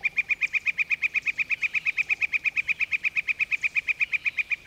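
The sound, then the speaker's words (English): A northern flicker gives a long, steady run of loud, sharp calls, about six per second, clear with no other sounds around it. “Now they all fly from tree to tree as the northern flicker.”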